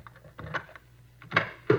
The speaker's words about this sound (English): Here we are. I'll get the door.